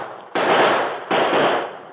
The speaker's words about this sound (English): As he turned back, Red opened fire.